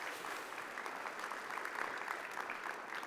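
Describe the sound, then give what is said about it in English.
A crowd claps steadily throughout for volunteers, a dense, even patter of many hands sustained at a moderate level with no voices standing out above it. “Yeah, you can give them a clap for them.”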